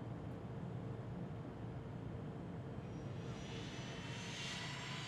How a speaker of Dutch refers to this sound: Even later rijdt het vliegtuig naar de startbaan. Dan begint het harder te rijden en gaat het de lucht in. Kijk eens door het raampje. We gaan al omhoog.